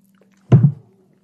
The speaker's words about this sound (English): So we have it with a little ice tonight, and we are going to take a little sip. First, I'm going to have a sip. Salute.